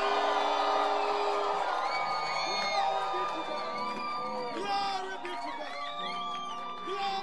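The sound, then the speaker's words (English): A large crowd shouts and cheers together in a sustained, loud roar, with overlapping high whoops and voices rising and falling throughout, no single speaker standing out. “Can you hear the shout?”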